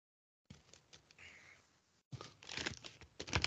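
Crisp rustling and crinkling of an A3 sheet of paper being folded repeatedly, with a brief pause and then a louder burst of creasing and scraping toward the end.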